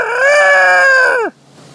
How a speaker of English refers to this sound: And I'm like, was that a rooster? Am I dreaming?